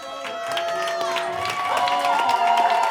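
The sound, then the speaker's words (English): A sustained applause sound effect, played for the city of Raleigh, Carolina, after the Canucks took a point against Carolina in hockey: a crowd clapping and cheering steadily at moderate volume, with scattered whoops and voices over dense, continuous clapping for about three seconds, no talking. “That applause is for the city of Carolina.”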